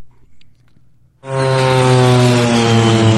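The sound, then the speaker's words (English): After a second of near silence, a crop duster propeller airplane's engine roars in abruptly and holds a loud, steady buzzing drone, like passing low overhead. “Ooh, crop duster.”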